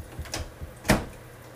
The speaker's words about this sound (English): That was the microwave.